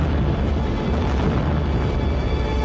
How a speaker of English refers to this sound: Even as Jor-El spoke, his warning to the people of Krypton was fulfilled. With an awesome roar, Krypton exploded.